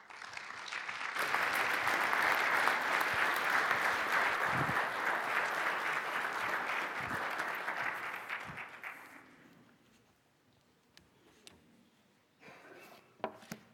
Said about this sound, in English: Please join me with a great round of applause to welcome our guest speaker this morning